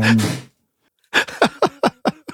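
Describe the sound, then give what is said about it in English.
A male Jack Russell terrier coughs: one harsh, breathy burst, a short silence, then a quick run of about six rasping, hacking coughs in steady rhythm, with no voices. “You hear him coughing there in the background.”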